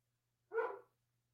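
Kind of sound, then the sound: animal, dog barking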